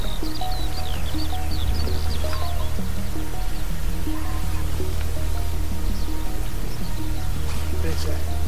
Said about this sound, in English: are now in the middle of the moors on Winter Hill. It's 5:30 and we're just still looking around to see whether we can see anything. Visibility still a bit dark, so I've got it on night mode, and as you can see, you can hear all the birds waking up.